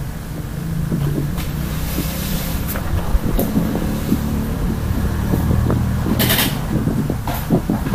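A steady, close electric fan whirs continuously, its low droning hum mixed with breathy air noise and a few faint clicks and rattles, with no one speaking.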